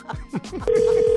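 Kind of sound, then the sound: signal or alarm, telephone dialing tones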